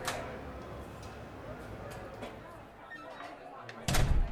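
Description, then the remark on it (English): A door is handled and swings open against a low, busy room murmur, then shuts with a loud thud near the end. “Please go through the door.”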